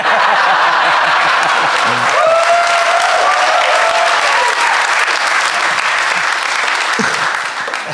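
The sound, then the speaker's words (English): A crowd bursts into sustained applause, a dense steady clatter of clapping hands that stays loud for the whole stretch, with a few whoops rising over it. “You applaud now.”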